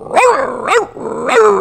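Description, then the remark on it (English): A person imitates a corgi barking, three sharp, yappy barks spaced roughly evenly, loud with a slightly whiny, rising-then-falling pitch. “Can you do a can you do a corgi or something like that?”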